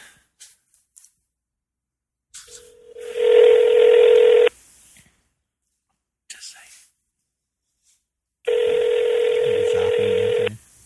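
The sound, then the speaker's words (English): A cell phone emits two long, steady electronic dialing tones while calling a pizza place, each lasting about two seconds and separated by a pause, with brief faint murmurs of voices in between. “Let's try this. On my cell phone.”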